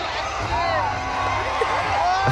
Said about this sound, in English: People are so wild, man. Let's go! Like, you'd expect to hear crowd reaction like this, like a concert or something.